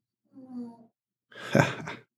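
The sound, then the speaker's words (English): Two snores: a short, buzzing tonal snort followed after a brief pause by a longer, rougher, breathy rattle, with no talking over them. “Oh, the snoring.”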